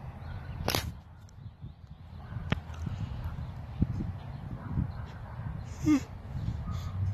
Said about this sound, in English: And you hear the dogs.